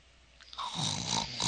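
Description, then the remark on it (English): A person imitates a snore: a single drawn-out, raspy, nasal snort that swells in loudness over about a second, fairly quiet. “And as we thank you for snoring through the RPG backtrack.”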